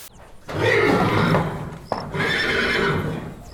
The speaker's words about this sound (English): Just outside with the horses.